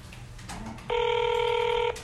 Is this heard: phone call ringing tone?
yes